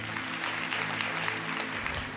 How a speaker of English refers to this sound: You see, in that moment, yes, you could clap for that.